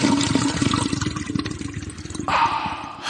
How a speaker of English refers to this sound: Can you do me a favor and find the toilet sound in there?